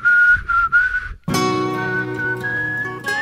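Someone whistles a short song tune in three clear, steady phrases, fairly loud, so that a Google app can recognize the song, then a brief pause before full, loud music abruptly takes over.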